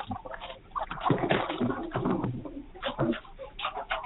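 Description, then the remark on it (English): A flock of 21 chickens pecking at their dinner, a dense, irregular patter of quick soft taps and scratches mixed with low, murmuring clucks, steady and busy throughout. “You want to hear these chickens eat dinner?”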